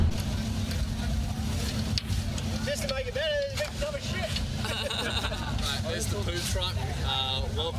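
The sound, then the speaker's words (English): A heavy septic pump-out truck engine rumbles steadily at a music festival, Big Pineapple Fest on the Sunshine Coast, a loud low drone filling the background, with faint chattering voices and a few high whines or squeaks over it. “where we sat down, set up everything to record, and then were just interrupted by the poo truck.”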